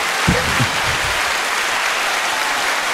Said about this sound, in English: They're all clapping.